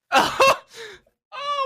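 A close, fairly loud burst of harsh coughing, then a shorter rasp and a brief pause before a drawn-out voiced sound, like a deliberately exaggerated fake cough.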